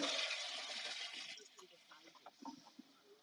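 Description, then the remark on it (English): A toilet flushes with a loud, rushing whoosh of water that drains away after about a second and a half, leaving faint gurgles and muffled voices in the background. “That sounded like a toilet flushing.”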